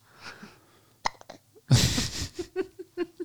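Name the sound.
hiccups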